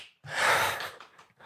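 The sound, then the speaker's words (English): A single sneeze bursts out, sharp and breathy, followed by a few fainter sniffs and rustles as it fades. “Bless you, child.”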